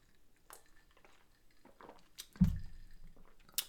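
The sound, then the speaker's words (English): Someone takes a quiet sip of a drink, with soft wet mouth sounds, a gulp and a dull low thump partway through. No one speaks. “Go ahead and think about that while I take a sip of my drink.”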